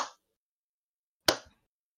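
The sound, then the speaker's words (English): A slow hand clap: two sharp, crisp claps spaced more than a second apart, each with a brief decaying tail, separated by silence and with no voices. “Look, oh, what a fucking slow clap.”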